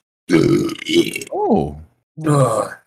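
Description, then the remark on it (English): A loud forced burp: a few raspy, croaking bursts in quick succession, one with a rising and falling groan-like pitch, then a final rough belch after a short pause. “That was a manual burp.”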